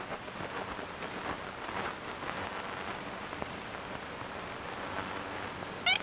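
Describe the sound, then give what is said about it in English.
Steady hiss of static fills an old field recording from 1935, made by the founder of the Cornell Laboratory of Ornithology, then a single short, nasal ivory-billed woodpecker honk pops out near the end, brief. “So that little honk? Uh-huh. That's a recording of the ivory-billed woodpecker?”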